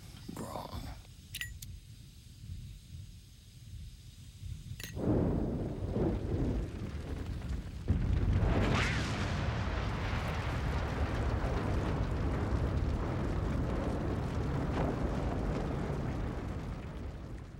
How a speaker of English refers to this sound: Of course, the car explodes. It's a pretty crazy experience. Like, it's an inferno.